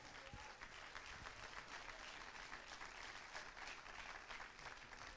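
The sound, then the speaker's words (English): An audience claps steadily for several seconds as a hand clap of appreciation to God, a dense wash of many hands applauding together at an even level, with no speech over it. “Let's give that hand clap of appreciation to God.”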